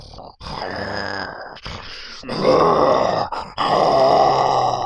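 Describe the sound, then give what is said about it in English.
A person imitates a dog's growl during a tabletop role-playing game, the dog turning on a villager: several sustained, rough, guttural snarls with short breaks between them, growing louder and harsher toward the end. No other sounds accompany the voice. “Yep, Angry Villager 4 has just got his throat ripped out, and the dog's then turning on Angry Villager 14, growling.”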